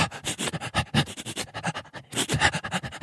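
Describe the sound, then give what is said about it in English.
A dog sniffs and breathes in quick, rhythmic bursts, with a brief pause before the rapid huffing resumes. No one speaks. “So they can breathe in and out and continuously smell at the same time.”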